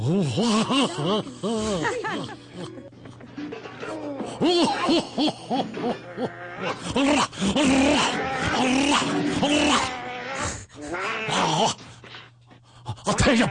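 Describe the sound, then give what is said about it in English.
A lion growls and roars loudly and repeatedly, with drawn-out, wavering snarls following one another almost without pause, over a steady low hum in the background. “And guess what pops out? A lion.”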